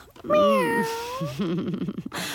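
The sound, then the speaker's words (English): A person imitates a cat with one long, drawn-out meow that rises and slowly falls, then trails into a lower, wavering vocal murmur, fairly loud. “Good kitty.”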